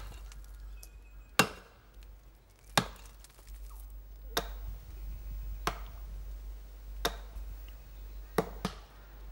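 Sharp axe blows strike wood at a steady pace, about seven chops spaced a second or so apart, as women chop down a hollow tree in a forest in search of honey, over a low constant hum of the outdoors.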